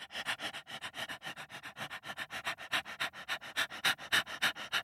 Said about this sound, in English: A dingo came with a tongue long sticking out of its mouth trying to keep cool. Do you know which animal I'm talking about? A dingo. It is a dog.